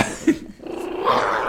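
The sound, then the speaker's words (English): A dog growls in a low, rough rumble that rises into a sustained snarl, moderately loud, with no one talking. “This dog is the worst.”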